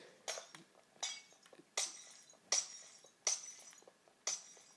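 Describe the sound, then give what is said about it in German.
Six sharp glass-breaking crashes from a video game as glass is removed from a finished potato farm, each a bright shattering burst with a quick decay, spaced roughly evenly, with faint game sounds between them. “Ich mache das Glas wieder weg.”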